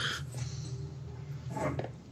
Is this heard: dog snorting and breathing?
yes